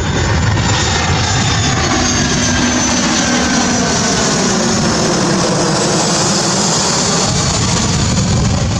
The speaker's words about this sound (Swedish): Ja, flygplanen var i luften i natt.